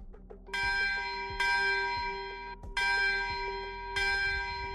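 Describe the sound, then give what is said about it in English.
A bell tolls six times to mark 6 p.m., with slow, evenly spaced strikes, each ringing out and overlapping the last as it fades. Clear, with no talking. “So you hear 6 bells.”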